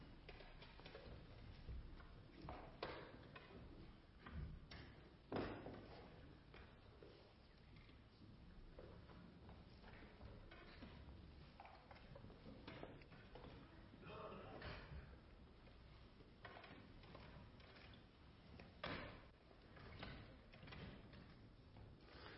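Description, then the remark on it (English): Rows of chairs are pushed off to the side, scraping and bumping across a floor in a steady series of short knocks and drags, some louder than others, with a low murmur of people in the background. “So maybe if you're in the first or second row, just kind of go to the side and we'll move some of these chairs. Just kind of push them off to the side.”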